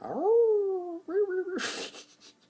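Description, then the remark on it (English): A person imitates a wolf howl with their voice: a sustained, gently rising then steady tone, a shorter second howl, then a breathy exhale, all kept fairly soft. “So the wolf howl will sound something like this.”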